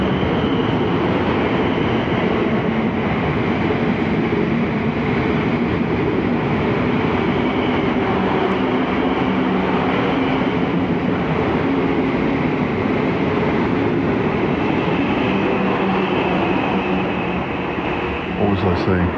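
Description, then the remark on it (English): A loud, steady rumble of a train at a railway station platform fills the whole stretch, constant, with faint indistinct voices buried beneath it. “Passengers travelling to Surbiton remain on Platform 1 for the 1429 train.”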